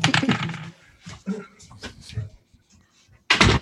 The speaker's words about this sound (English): let me close this door real quick. Give me a second.